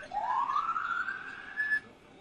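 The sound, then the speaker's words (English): A police siren wails in a single long rising sweep, climbing steadily in pitch before cutting off, heard clearly with no one talking over it. “I want to get you guys thinking that there's some sirens going on.”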